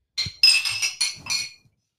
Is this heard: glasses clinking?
yes